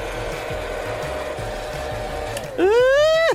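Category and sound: household object, hair dryer blowing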